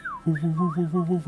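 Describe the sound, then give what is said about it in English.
A voice imitates an amulet whistling as it is whipped around on its chain: a short falling whistle, then a wavering hum that swells and dips in quick repeated pulses. “I get my amulet out and I start whipping it around on its chain. Okay. Kind of making it whistle a little bit.”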